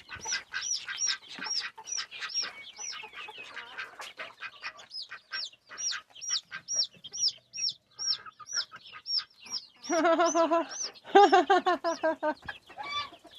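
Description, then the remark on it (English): A rooster clucks in a rapid, steady series of short calls, ending in a few louder, harsher squawks near the close; no talking is heard. “Like some gay rooster action, huh?”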